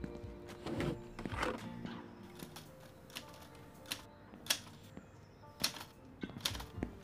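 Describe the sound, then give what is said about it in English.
Typewriter keys clack in an uneven, unhurried rhythm, each strike a sharp mechanical snap, with a few louder thumps scattered through and no voices. “Have you ever typed on a typewriter?”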